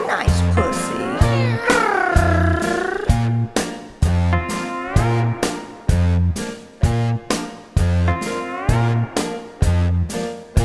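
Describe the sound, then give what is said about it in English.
A cat meows several times in drawn-out, wavering cries, set against a steady, loud thumping beat with music that keeps a regular rhythm throughout. “Just a friendly little cat, friendly little cat.”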